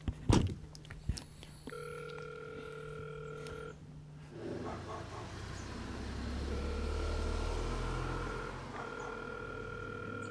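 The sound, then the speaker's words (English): A button click, then an intercom's electronic ringing tone at a gate in a village sounds in two long steady bursts with a pause between, over outdoor background noise and a low engine rumble. “I'm going to press to call.”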